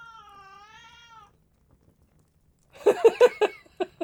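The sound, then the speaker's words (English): A 3-kilogram cat makes noises: first a soft, drawn-out meow with a wavering pitch, then after a short pause a louder burst of rapid, choppy chirps and yowls. “I feel like I'm being upstaged by a 3-kilogram cat here.”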